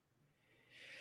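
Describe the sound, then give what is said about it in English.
A single sneeze: a soft, breathy hiss that swells quickly into a bright, airy burst at the end. It's fairly quiet, with no talking. “Bless you. Bless you.”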